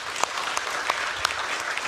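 A crowd applauds steadily, a dense wash of many hands clapping at moderate loudness, with a few sharper claps standing out and no one speaking.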